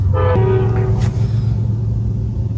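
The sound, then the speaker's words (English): A train rumbles past a car parked next to the train tracks, its horn blaring a steady tone for about a second over the heavy, continuous low roar of the passing cars. “I shouldn't have parked next to train tracks.”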